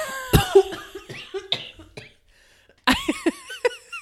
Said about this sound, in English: I'm sorry, I coughed into the microphone because I was so shocked by that.